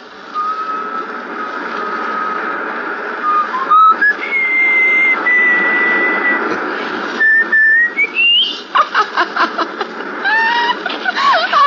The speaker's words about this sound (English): Can you whistle? Sure. Whistle. Yeah, I know just the tune.